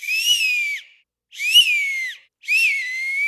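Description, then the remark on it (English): Three loud, shrill whistle blasts, each lasting under a second with brief silences between, piercing and slightly wavering in pitch. They are made by blowing into a small hole formed by an acorn cap held like a bowl between the hands in front of the face. No talking. “But when you hold the acorn cap in front of you like a bowl, and you put it in front of your face with your hands, you blow into a little hole that you've created, and it creates quite the whistle.”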